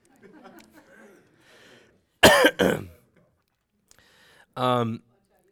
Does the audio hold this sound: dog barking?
no